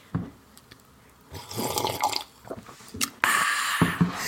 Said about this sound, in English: Guinness World Record holder for the world's loudest drinker. She drinks water at least 8 times louder than Ron